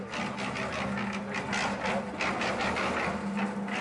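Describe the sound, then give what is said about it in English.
A washing machine doing laundry runs steadily at the end of its cycle, a continuous mechanical whir with a low hum and quick rhythmic churning pulses, moderately loud, with no one talking. “I'm doing laundry. My washing machine was telling me that was it.”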